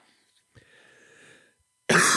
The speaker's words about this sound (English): Oh my God, he's still sick. 14th podcast in a row that I've been coughing the whole time.